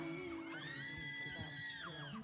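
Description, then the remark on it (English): A crowd screams continuously at high pitch, many voices blending into a loud, sustained shriek that rises and falls slightly without letting up. “The screaming is crazy.”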